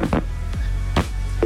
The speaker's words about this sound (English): Oh my gosh, that went from what sounded like dial-up internet to a dial tone. What is going on?